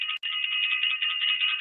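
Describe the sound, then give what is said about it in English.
A shrill, rapidly trilling bell rings steadily and loudly, breaking off for an instant near the start, then carrying on unbroken with no voices. “I want to ring the bell.”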